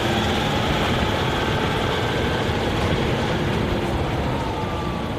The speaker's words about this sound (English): And as the truck climbs to land higher above the river, surface ruptures have left 10 metre deep scars in some parts of the hillside.